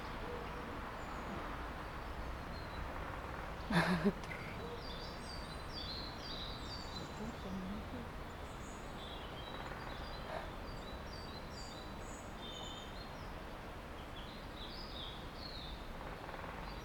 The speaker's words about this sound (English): Can hear all the woodpeckers, eh? Oh yeah.